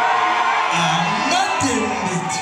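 A concert audience at Symphony Space in New York City, with many Congolese in the crowd, cheers and whoops in a loud, unbroken roar, with scattered high whoops and shouted calls rising above the crowd noise throughout.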